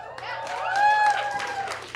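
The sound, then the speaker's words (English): A crowd cheers and applauds loudly for about two seconds, with sustained whoops and yells rising above a dense wash of clapping, swelling to a peak midway before easing slightly. “Are you sure we should be cheering?”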